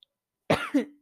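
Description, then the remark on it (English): A harsh, throaty cough burst followed by a shorter second cough with a low rasp, alone with no talking, caused by smoke from a burning candle. “Okay, I have a candle on, and it is affecting my breathing.”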